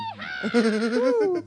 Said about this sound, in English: That donkey's Protestant, you can tell. Yeah. Thank goodness. Or that horse. It was a horse, yeah.